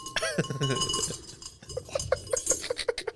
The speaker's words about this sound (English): My keys, not my AirPods.